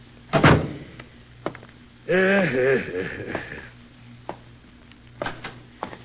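A heavy door thuds shut, then hinges creak as it swings open, followed by a few quiet clicks and knocks of the latch amid otherwise hushed surroundings.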